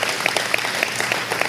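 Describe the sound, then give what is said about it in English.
A church audience at Forest City Church claps steadily to welcome people back to church after COVID, a dense patter of many hands with a few sharper claps standing out, moderately loud, with no voices over it. “Well, let's just give a round of applause.”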